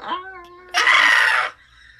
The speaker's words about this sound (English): I'm the first one that screamed.